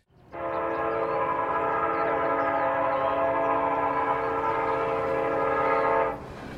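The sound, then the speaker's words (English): A loud, steady train horn blares for about six seconds over the low rumble of a moving train, then cuts off, leaving the rolling rumble underneath. “That day, Jo got stuck on the train to London.”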